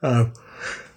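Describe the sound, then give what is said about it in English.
A single big yawn, fairly loud, opening with a deep voiced groan that trails off into a long breathy exhale. “A big yawn.”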